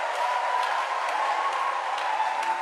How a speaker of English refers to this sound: It's a good place to clap your hands for the Lord.